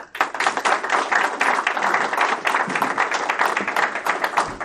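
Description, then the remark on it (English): A crowd applauds a speaker as he is introduced, with dense, overlapping claps that hold at a fairly loud, even level throughout, with no voices rising above the clapping. “It's a little weird at my church when I get up to give a sermon, I don't get applause, and so it's a nice touch.”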